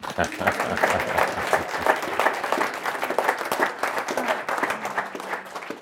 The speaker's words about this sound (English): And so we conclude Act One with applause.